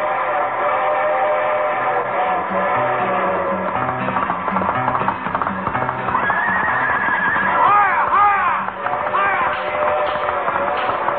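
A loud, steady rush like a passing train, the westbound limited for California called the Pony Express, merges with galloping hoofbeats, and horses whinny shrilly partway through, so the train comes across as a charging herd.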